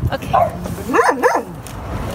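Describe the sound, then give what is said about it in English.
A dog named Brandy, rescued from a slaughterhouse by China Rescue Dogs, gives a few excited, high-pitched barks and yelps on meeting her adopters in a shipping yard in Vancouver, two quick rising-and-falling cries in a row, over a noisy background. “China Rescue Dogs saves dogs like Brandy from slaughterhouses.”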